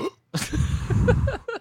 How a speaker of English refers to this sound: I can smell your burp.